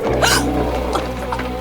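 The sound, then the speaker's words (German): A tiger hisses threateningly from a thicket: a sharp, breathy burst of hiss over a steady low rumbling growl, followed by fainter raspy breaths, all within under two seconds and with no talking. “Als aus dem Dickicht plötzlich und unerwartet ein bedrohliches Fauchen ertönte, fuhren die Kids erschrocken herum.”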